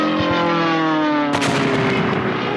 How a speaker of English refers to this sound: A little early on the plane crash there.